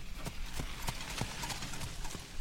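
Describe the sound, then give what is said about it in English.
Steady clip-clopping of horse hooves on a hard road, a regular rhythm of sharp knocks as a horse-drawn cart rolls past, with a low rumble of wheels underneath. “A horse-drawn cart passes us by, and a water wheel spins in the river, powering machinery in a mill.”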